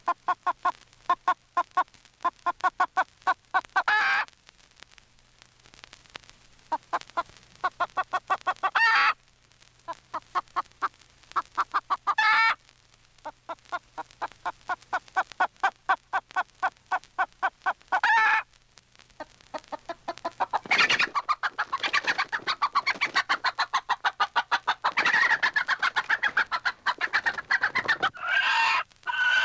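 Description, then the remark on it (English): A recording from a record of a chicken's distress cries, or a person imitating them: rapid, agitated squawks and clucks in loud bursts, with short pauses between frantic runs of cries that grow denser and harsher toward the end. “This is a record of distress cries by a chicken, or a person impersonating distressed cries of a chicken.”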